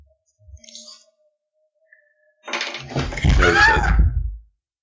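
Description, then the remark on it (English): A fist accidentally slams into a table while trying to grab a falling object, giving a heavy thump that sets off a loud rattling burst running on for about two seconds, while a pained voice cries out over it. A few faint knocks come first. “No, it involved me trying to grab something as it was falling and instead punching the table.”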